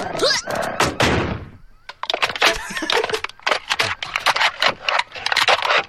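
Paper-thin, tinfoil-like corrugated metal doors clatter and bang in a loud, rapid jumble of sharp crashes and rattles, with a brief scraping rush at the start and irregular metallic hits continuing throughout.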